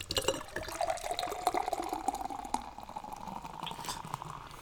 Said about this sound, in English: It's a dark chocolate beer with espresso, hazelnut, and orange. And it's a nitro beer, so I get the honor of pouring it and opening it. In a very nitro style, so as tradition of this podcast, everyone can just listen to me pour it.